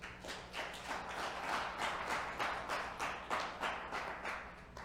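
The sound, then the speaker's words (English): An audience claps for Jesus together in a steady, rhythmic beat, sharp bursts repeating about three times a second at moderate loudness for the whole stretch, with no voices over it. “Let's clap for Jesus.”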